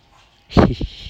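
A dog being taken outside barks: one loud, full bark followed quickly by a shorter, softer yelp, after a moment of near silence.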